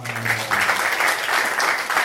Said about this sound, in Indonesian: Wih, tepuk tangan.